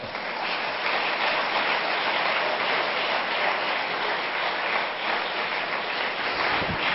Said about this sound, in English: Give God a hand clap.